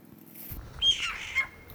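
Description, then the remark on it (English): A scrub jay, seen while walking along at about 12:32 p.m., gives a harsh, raspy squawk, two rough bursts close together with a low rumble of background noise beneath, moderately loud. “But we saw some sort of, I would say it's like a scrub jay.”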